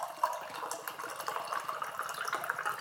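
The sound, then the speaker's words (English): Water is poured steadily into a wine glass, a continuous bright splashing and trickling that fills the short stretch with no voices. “Here I have some water into this wine glass.”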